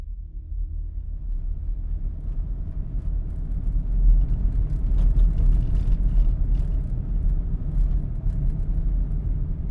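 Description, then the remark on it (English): A car drives steadily along the 41 and connecting back roads toward Priest River, its engine and tire rumble forming a continuous low drone with faint higher hiss; no one speaks. “We drove in silence for a while, taking the 41 and connecting back roads up to Priest River, where it drops onto Highway 2.”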